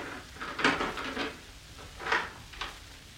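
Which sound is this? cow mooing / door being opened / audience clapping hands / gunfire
door being opened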